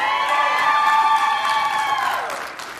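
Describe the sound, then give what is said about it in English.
A church audience at New Life cheers loudly in reply to a morning greeting, a dense wash of many voices whooping and shouting that holds steady for about two seconds before fading out. “If you couldn't hear that online, I paid those guys to cheer for me.”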